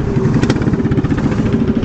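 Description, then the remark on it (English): The engine of a Samson Grand Sport, a small 1920s light car that raced at Brooklands, runs steadily, a loud, rapid low-pitched chugging with a buzzy rattling edge, holding an even idle throughout with no voices. “It's a Samson Grand Sport, which is a little light car that raced here a couple of times in the 1920s.”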